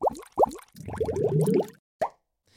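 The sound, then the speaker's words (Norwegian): A short playful jingle introducing a new segment, made of bubbly plops: two bright pops, then a quick run of wobbling bubble tones over a low gurgle, ending with one last plop and a faint tail. “vi tenkte vi skulle prøve ut en ny spalte. Ja. Innføre en ny spalte. ja. Som heter Bobler. Så kjør jingle.”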